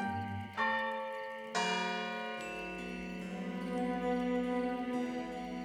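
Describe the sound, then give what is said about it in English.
Large bells in a town square ring noon in a series of strikes, each one landing before the last has faded, so their rich, humming tones blend into a continuous peal. No one speaks. “When she heard the bells ring noon in the town square, she saw it too.”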